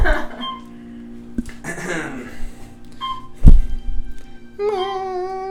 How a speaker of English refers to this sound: Still hearing that alarm going.